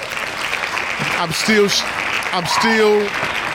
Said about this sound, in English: Shout out to …. Hand claps.